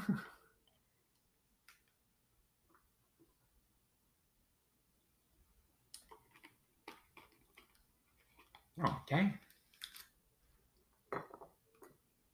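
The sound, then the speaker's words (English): Drinking sounds: a glass of lemonade clinks and is handled, followed by a couple of brief slurping sips and a swallow, with no one talking. “So before I get started, let me take a sip from my lemonade.”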